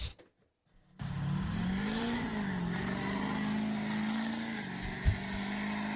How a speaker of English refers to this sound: So this guy stops by, wants to do a burnout. I'm like, yeah, you can do a burnout. He's got brand new tires. He did have brand new tires. So we weren't thinking he was going to toast them. And it was a truck.